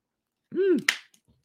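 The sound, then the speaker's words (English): A single hiccup: a brief voiced vocal sound that swells and then cuts off in a sharp, abrupt catch, followed by silence with no talking. “Excuse me, I got the hiccups now.”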